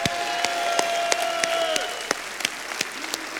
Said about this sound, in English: Let them know how proud you are of them. Let's give them a big cheer, yeah!